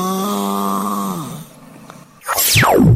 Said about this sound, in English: right, there you go. Those are the three snores.